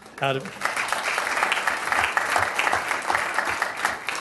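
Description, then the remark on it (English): An audience breaks into steady, sustained applause, a dense wash of clapping that holds at an even level for several seconds after a brief vocal sound at the start. “I should have like a little applause lines type thing.”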